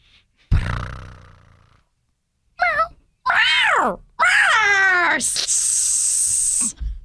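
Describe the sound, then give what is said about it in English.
A person imitates an angry, biting cat: a low grunt, then rising and falling yowls, warbling growls, and a long harsh hiss, loud over about seven seconds. “Sure, let me hear your best crazy cat.”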